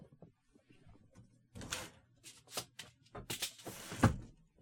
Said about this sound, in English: Also, I need to close my window. The garbage truck is coming by.